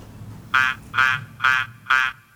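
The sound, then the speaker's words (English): A duck quacks in a steady rhythm, four loud, nasal, mid-pitched quacks about half a second apart, with a fifth just starting, over a faint low rumble, as the intro of a dance pop song. “It's a duck sound, guys.”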